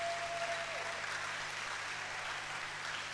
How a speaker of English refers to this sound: All right, clap your hands for her as she comes.